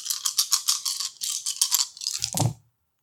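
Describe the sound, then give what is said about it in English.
Six dice, rolled for a finesse and warfare check in a tabletop game, rattle in a quick, rhythmic series of bright clicks, ending with a short, duller clatter as they drop and settle. “That's six dice.”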